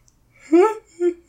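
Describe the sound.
A person yawns audibly: a drawn-out, voiced stretch that swells and bends in pitch, followed by a short, softer groan as it trails off.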